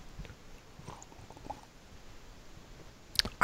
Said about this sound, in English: All right. Let's take a sip of coffee right now. Okay. All right. Hang on.